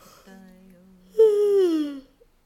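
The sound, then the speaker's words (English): A person stretches, reaching up on one side, and yawns: a soft, low breath gives way to a loud, drawn-out yawn whose voiced tone slides downward for close to a second before fading into quiet. “See if you can find some space between your ribs by reaching up on one side and yawning.”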